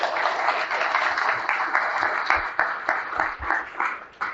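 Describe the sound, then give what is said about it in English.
Audience applause for a group of women, a dense, steady wash of many hands clapping at moderate loudness, with a few sharper individual claps standing out as it starts to thin toward the end. “Give these ladies a big round of applause.”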